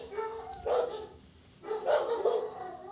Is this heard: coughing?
no